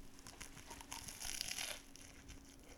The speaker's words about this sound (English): I've only had one bite so far, and I've been waiting for us to start talking so I can do what I love to do and make a little crunchy, delicious noise on the mic. So, yeah, here we go.